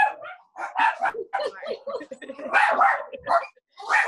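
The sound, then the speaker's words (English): Three dogs bark and yip inside an apartment in an apartment building, in rapid, overlapping bursts, a loud, restless chorus with only brief pauses between outbursts. “I have three dogs in here and I live in an apartment building and it's just sort of what it is.”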